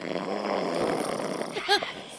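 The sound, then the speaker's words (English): A man snores heavily in deep sleep, a rough, rasping rumble that swells and fades with each breath, with a brief harsher snort near the end. “It's him snoring.”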